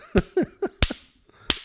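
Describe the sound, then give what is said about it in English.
Six sharp hand slaps, imitating a knife slapping a steak, each a crisp smack like flesh struck on flesh, come in an uneven rhythm with a short pause before the last one. No one speaks. “But he picks up his steak while he's eating and he's slapping it with his knife like it's a fucking like ass.”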